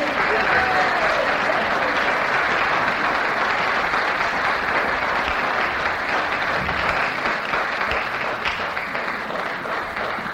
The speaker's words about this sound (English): Give them all a clap.